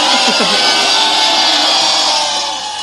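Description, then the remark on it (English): A loud, sustained wash of crowd booing, the same booing sound effect looped about 10 times, fills the whole clip, dense and steady with a few deeper voiced jeers early on, fading slightly at the end. “It's the same one, but it's on like 10 loops. They're booing.”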